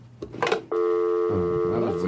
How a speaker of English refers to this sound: Oh, look, we got a phone call coming in from Mark Wahlberg.